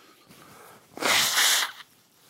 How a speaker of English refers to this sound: Forgive me for a moment. I feel like I have to sneeze, and it's real hard to talk when you feel like you have to sneeze.